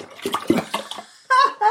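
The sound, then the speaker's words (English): A whole juice glassful of liquid pours steadily into a pot for a half orange juice, half wine mix, for about a second with a splashy, gurgling texture, followed by a brief voiced sound at the end. “We'll put in a whole juice glassful then.”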